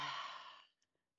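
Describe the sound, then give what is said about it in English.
A pet named Willow yawns after being woken from her afternoon nap: one breathy, slightly whiny exhale that fades out over most of a second, followed by a couple of faint mouth clicks in otherwise quiet surroundings. “now it's a good day because we had the Willow yawn.”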